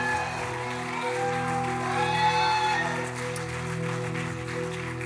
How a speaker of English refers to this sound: Come on, clap and shout to God all across the place.